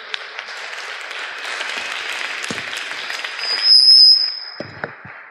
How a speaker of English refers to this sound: All right, please give everyone a big round of applause.